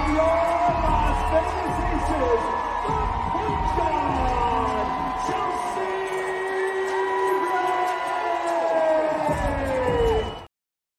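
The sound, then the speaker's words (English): A loud, sustained crowd roar at a sold-out WNBA All-Star game, with cheers, whoops and many overlapping voices rising and falling, continuing steadily for about ten seconds before cutting off abruptly. “This was a sold out game for the All-Star game. And the crowd was phenomenal. It was loud.”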